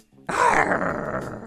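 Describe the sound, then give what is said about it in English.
A person's voice produces a loud, rough, sustained growl imitating a tiger, starting abruptly and rumbling steadily for about a second, with no other talk. “That's my growl.”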